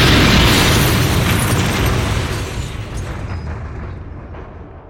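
A single loud explosion bursts at the start, then a broad roaring rumble slowly fades and thins over several seconds, with no voices.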